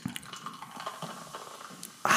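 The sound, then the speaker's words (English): Faint clinks and small liquid ticks give way to a sudden, loud fizzing rush as Diet Coke is poured into a glass of bourbon, the carbonated hiss filling the last moments. “That's not pouring beer. Diet Coke into my bourbon.”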